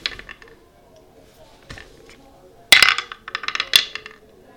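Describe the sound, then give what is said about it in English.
Dice clatter across a hard surface for a deception roll in a game, in a loud burst of sharp, bright clicks and rattles lasting about a second, after a few faint ticks, with no voices. “I'll make a deception roll to try and pretend it wasn't me.”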